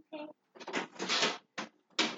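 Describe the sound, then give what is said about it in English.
A door is handled and shut, with a few scraping, rattling bursts and a final clunk, as a girl heads out carrying her umbrella. A brief vocal sound comes just before. “Okay, make sure you take your umbrella and then close the door.”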